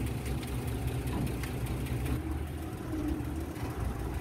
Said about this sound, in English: The truck started and then began to drive off on the road that led to the airfield.